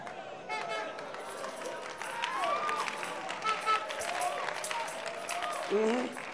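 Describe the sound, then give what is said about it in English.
An audience claps for Jesus Christ in a dense, steady patter that lasts throughout, with scattered voices and cheers rising over the applause and a brief louder swell near the end. “The good ones are clapping for Jesus Christ.”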